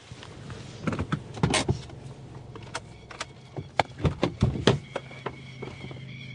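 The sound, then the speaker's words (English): A quad bike engine idles on a farm in the country with a low, steady drone, while a string of sharp clanks and rattles breaks over it irregularly. No one speaks. “And the sound of the country spewing plovers, cows and a quad bike.”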